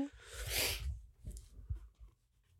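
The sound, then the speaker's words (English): A muffled sneeze, held back to avoid sneezing into the microphone, bursts out in a short, breathy rush of noise, followed by a few soft low thumps and faint rustling. “Trying not to sneeze into the microphone.”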